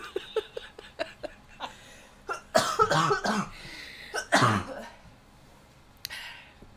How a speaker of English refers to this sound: Every time I cough, it's like a brand new me.